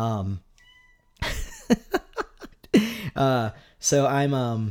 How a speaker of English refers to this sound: For those who have missed Heffalump meowing in the background, there you are.